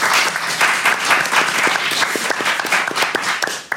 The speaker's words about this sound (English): All right, a round of applause for Team Handsaw.